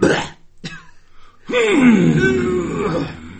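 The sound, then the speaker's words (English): Two short, harsh coughs, then a longer strained, wheezy vocal sound that holds and wavers in pitch before fading slightly. No words are spoken. “That's made me cough for real now.”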